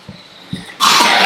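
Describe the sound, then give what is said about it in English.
Two soft, muffled coughs from audience members, followed by a sudden loud, harsh cough burst that rasps on to the end. No one is speaking. “Ooh, you guys have good coughs.”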